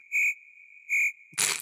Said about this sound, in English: Is it really, though? Can we have some cricket sound here, please?